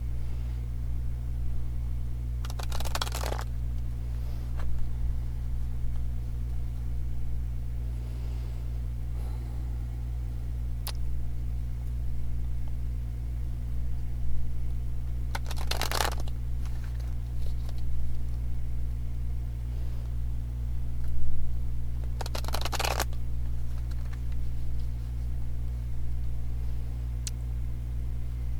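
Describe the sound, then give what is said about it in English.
Three short, crisp riffles of a deck of cards being shuffled during conscious breathing, spaced several seconds apart over a steady low hum, with no one speaking. “I'm now going to take a moment to bless and ground them in energy for the highest good of all, most benevolent outcome for all, and I'm going to shuffle and do conscious breathing.”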